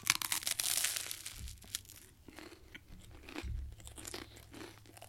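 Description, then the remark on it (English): Crisp crunching of someone biting and chewing crunchy toast, not near the microphone, a steady run of brittle cracks and crackles over several seconds with no talking. “I can hear you, the crunch part of the toast.”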